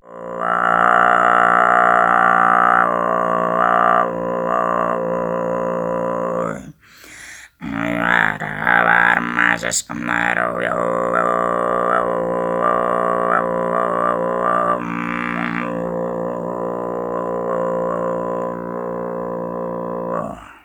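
Deep, growling kargyraa throat singing: a loud, rumbling low drone thick with buzzing overtones, held in long phrases broken by a couple of brief pauses for breath.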